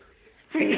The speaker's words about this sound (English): terribly sorry. Bless you.